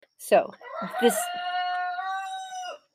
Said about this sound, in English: And by the way, I apologize for any crowing my roosters may be doing.